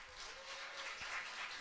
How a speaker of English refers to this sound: I am happy to welcome our next honoree. Let's give a warm round of applause for our next 2023 Women Who Lead honoree